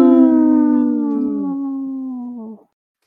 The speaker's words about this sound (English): Wolf.